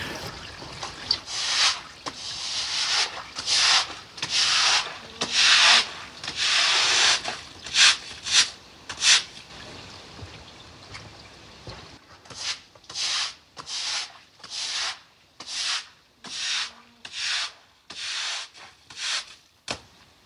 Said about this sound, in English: So this is actually me swishing buckets of water across the concrete there, so just to sweep it down.